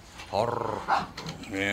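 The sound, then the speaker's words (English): Several dogs growl and snarl in a short, tense scuffle over a little stuffed star toy, the rumbling vocalizations rising and overlapping in quick bursts. “Why is Jude fighting with the other dogs?”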